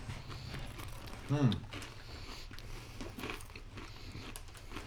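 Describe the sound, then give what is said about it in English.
Close-up crunchy chewing of a coated snack, Beaver Nugs, with loud bites and crackly mastication right at the microphone, continuing steadily with a brief vocal sound near the start. “Yep, just chew directly into the microphone. Crunchy coated.”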